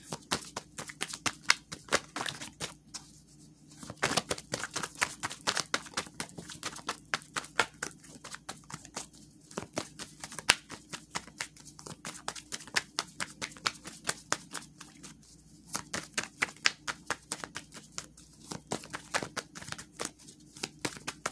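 Tarot cards being shuffled, a steady run of quick crisp riffling clicks and taps in bursts with brief pauses, fairly quiet, with no voices.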